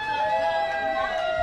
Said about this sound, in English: And these people cheering.